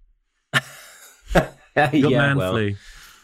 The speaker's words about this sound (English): Although I do have a cough, so you know that I think everybody else would naturally assume that I'm a COVID sufferer, but I'm not. I'm all right. It's just running in our family at the moment.